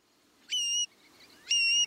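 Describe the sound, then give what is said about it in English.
A male long-billed curlew sings its bubbling song in spring as part of its mating display, giving two loud, clear whistled notes about a second apart, each held briefly and ringing with harmonics, over a quiet outdoor background with no voices. “In spring, the male long-billed curlew sings his bubbling song, stitching a zigzag across the sky.”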